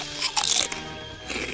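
A crisp crunch of someone biting into Defco's Black Lagoons, a crunchy, crispy snack, with a bright burst of crackling followed by a softer second crunch as they chew.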